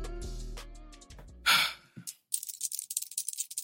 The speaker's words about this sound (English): You can hear the clinking of my rings.